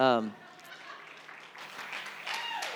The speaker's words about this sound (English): But yeah, thank you. You can give me a round of applause. That's nice.